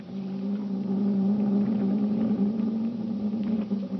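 A steady, continuous engine drone of an atomic submarine underway in the open sea hums low and even throughout, with faint mechanical rattles and clicks over it, like heavy marine machinery running below decks. No one speaks.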